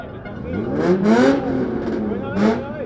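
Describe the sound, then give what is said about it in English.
A car engine revs hard in rising and falling surges, loud, with bursts of hissing noise between the pitch sweeps as if tires are spinning, as cars spin in a parking lot encircled by spectators. “The spinning stopped immediately.”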